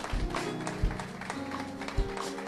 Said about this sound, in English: Oh, clap for the Lord.